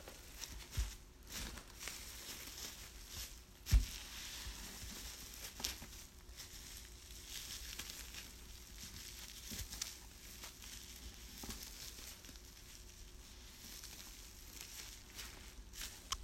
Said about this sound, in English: today I will be using cellophane to make it sound like sizzling bacon, and I'll just be wadding it all up to give it the sound effect of the sizzle on the bacon.